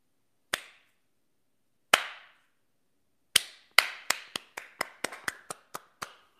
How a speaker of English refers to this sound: Slow clap, anybody? Will you join me in a slow clap for the CEO of Goya Foods, whose name I didn't write down, but he's awesome?